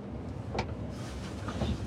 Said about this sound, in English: Are you blowing away out? Pretty windy out, huh?